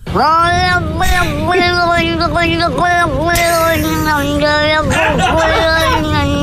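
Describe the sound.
A cat from Cork, Ireland, meows in a long, continuous run of drawn-out yowls that rise and fall in pitch, loud, with a chattering, almost speech-like cadence.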